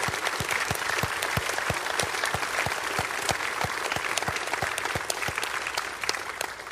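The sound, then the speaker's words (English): An audience breaks into a steady round of applause for men asked to stand up, many hands clapping at once in a dense, even patter that holds at a strong level throughout, with no one speaking over it. “will you please stand up because we're going to give a round of applause to you.”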